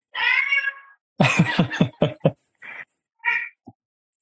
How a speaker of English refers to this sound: Who's making all that noise? That cat? Yeah.